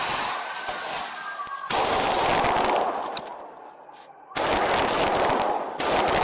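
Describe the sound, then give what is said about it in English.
Loud, sustained bursts of rapid AR-15 rifle gunfire crackle in dense, overlapping volleys, with brief lulls between them and no voices audible, as the gunman opens fire on police arriving at the scene, recorded on police body camera footage. “there's an AR-15. It's opening fire on the cops as they're pulling in, continuing to fire, and cops are running towards the gunfire.”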